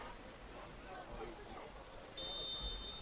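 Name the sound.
referee's whistle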